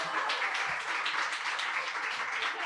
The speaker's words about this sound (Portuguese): a gente salva de palmas para a Prússia Beer